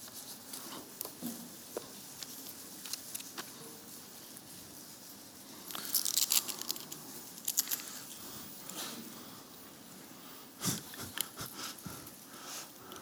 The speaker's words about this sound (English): Church used to be the rustling of pages. Now it's the crinkling of aluminum foil and saran wrap.